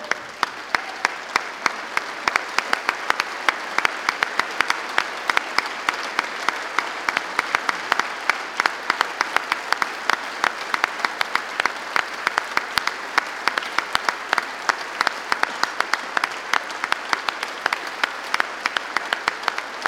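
Sustained applause from a large crowd fills the room, a dense, steady patter of many hands clapping at an even loudness for the full twenty seconds, with no one speaking.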